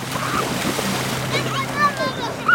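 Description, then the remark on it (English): Steady sloshing and splashing water at a beach on the shores of Lake Geneva (Lac Léman) in Geneva, Switzerland, with children playing and splashing, their voices calling out in short, high bursts over the continuous wash. “There, we found children playing and splashing and building sandcastles.”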